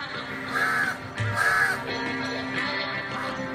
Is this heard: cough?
no